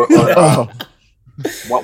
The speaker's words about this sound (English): Let me clear my throat.